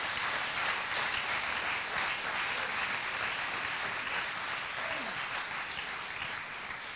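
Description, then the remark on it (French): An audience claps steadily for several seconds, a dense, even wash of many hands with no pauses, holding at a fairly loud level and easing off slightly at the end. “Clap for him. Applaudissez brother.”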